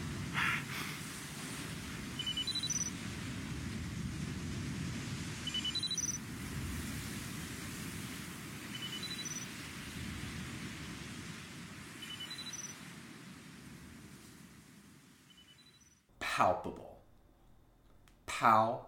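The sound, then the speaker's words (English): Ocean waves lap and wash steadily onto a beach in a continuous rushing hiss, with a few faint chirps above. Near the end the surf drops away and brief, louder sounds break in. “It was the waves in the ocean lapping while he was sulking”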